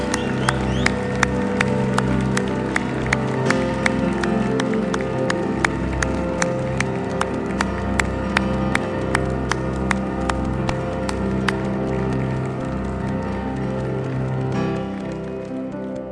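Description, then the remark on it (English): A large crowd claps and cheers steadily for about sixteen seconds, a dense wash of applause with sharp hand-claps and whoops, fairly loud, tapering slightly at the end. “Let's give one last big cheer.”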